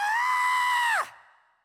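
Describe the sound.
A single loud, high-pitched scream lasting about a second, voiced by an adult imitating the crying scream of a boy named Derek who had fallen down after being pushed and broken his arm, then dropping off sharply into a brief fading tail.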